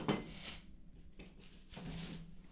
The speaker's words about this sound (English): Just knocked my candle off. It's a good thing I didn't light that up.